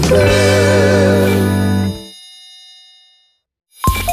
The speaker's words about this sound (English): Your phone is ringing, yeah. You might want to take this call. Yeah, you don't want to miss it at all. It could be someone new. Your phone is ringing, yeah, yeah.